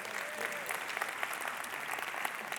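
A crowd applauds steadily for a guest speaker, a psychologist and author, a dense wash of many hands clapping at a fairly even level from start to finish with no voices standing out.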